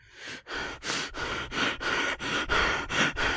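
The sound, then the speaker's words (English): Rapid, heavy breathing of a man, with loud ragged inhales and exhales repeating in a quick, panting rhythm about every third of a second, no talking. “So he starts breathing heavily.”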